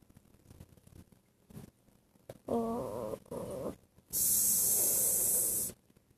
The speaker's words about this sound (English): Oh. What's that? Sounds like a normal cat and a big giant cat. Mom, there's a tiger.